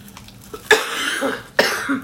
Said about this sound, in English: Smoker's cough. Come on.